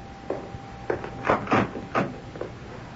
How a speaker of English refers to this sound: You want me to open the door, Mom? No, no. Let me.